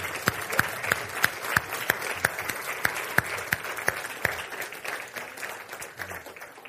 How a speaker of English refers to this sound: So I'm just going to invite them to stand and wave so that we can give them a big round of applause and to express our thanks to them.